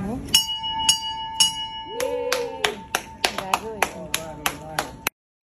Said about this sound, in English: He rang the bell today. I've got a video to show you.